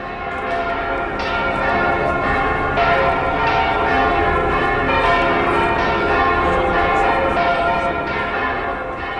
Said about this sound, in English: Played in by the bells from Burgos Cathedral there